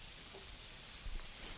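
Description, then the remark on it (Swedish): A steady, quiet crackling hiss of food frying in a large frying pan about 30 centimetres across, turning golden, with a soft continuous sizzle and a brief low thump near the end. “Om vi hade haft en mindre stekpanna, hade du stekt den i omgångar då?”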